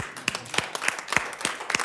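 An audience claps together in a steady, regular rhythm, the many hands landing as one sharp beat roughly three times a second, lively, with no voices standing out.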